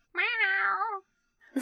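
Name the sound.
cat meowing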